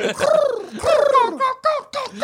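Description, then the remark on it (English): A person vocally imitates the noise of calling birds, producing a few warbling, cooing-like hoots in quick succession, fairly loud, with no other talk. “Pears, and also calling birds, and also being like, That's the noise they make.”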